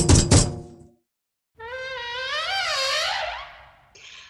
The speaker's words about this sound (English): Well, I think we'd better knock on this door and see what this is all about.